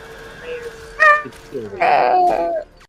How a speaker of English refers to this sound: That wasn't bad acting, I guess, right there with the scream.